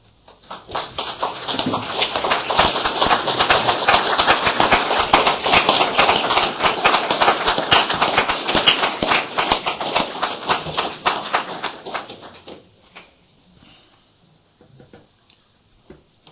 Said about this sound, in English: Applause says most of it.